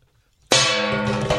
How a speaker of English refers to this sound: What the hell? He just broke the gong. Now, when Alan comes back, he's going to say the gong is off the, it's not even hanging anymore. It's not hanging anymore.